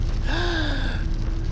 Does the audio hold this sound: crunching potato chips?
no